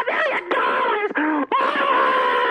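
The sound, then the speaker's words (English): Loud, high-pitched excited screaming from a caller on a live broadcast, excited at the chance to win a large cash prize by guessing a song, in several sustained bursts with brief breaks between them, piercing, held for a couple of seconds each. “Okay, you don't scream. We're on the air.”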